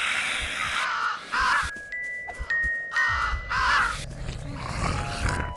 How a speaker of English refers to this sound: When you break your shield by running into something, I'll show you. Not with that item. Yeah. That's what it sounds like.